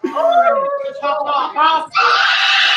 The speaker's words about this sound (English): That's a wicked scream. I love that.